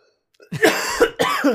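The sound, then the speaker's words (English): A person coughs in two harsh, raspy bursts after a gasp went down the wrong way, the first starting with a sharp onset and trailing off, followed by a second rough bout after a brief pause. “Yeah, I gasped. And then the gasp went down the wrong way.”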